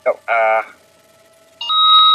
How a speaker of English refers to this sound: And can I hear your buzzer sound?